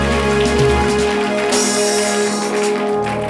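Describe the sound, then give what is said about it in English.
A seated audience at a church service claps together in a dense, continuous patter of many hands, steady and loud for a few seconds. Sustained musical tones hum underneath, and no one speaks. “But today, as you sit, according to your sitting and your clapping, may God let you sit on your chair.”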